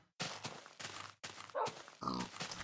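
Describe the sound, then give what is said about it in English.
A pig grunts four times in quick succession, loud: rough, breathy snorts with short gaps between them and no one talking. “Both the pig and Wolfie were looking at me.”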